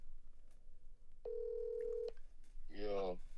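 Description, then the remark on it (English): A phone call to a friend is being placed: a dialing tone sounds once, a steady electronic beep lasting just under a second, clear, followed shortly by a brief burst of a voice. “He probably ain't gonna answer.”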